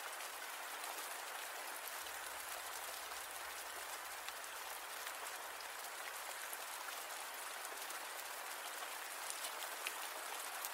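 Steady rain falls without pause, a dense hiss of countless drops spread across the upper range, even in loudness throughout with no voices or other sounds.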